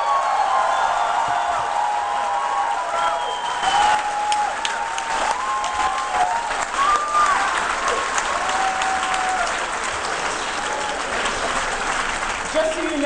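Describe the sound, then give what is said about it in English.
An audience claps steadily and densely for about thirteen seconds for a speaker just introduced, a sustained wash of applause with a few short voiced calls or whoops rising above it. “The author of Sexuality and Socialism, let's give it up for”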